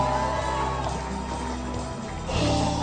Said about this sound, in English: Somebody give God a clap, a shout, and just thank God.